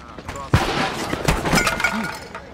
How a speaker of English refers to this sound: It's all right. It's just a car. It must have backfired. Stuck intake valve. They say it stops eventually.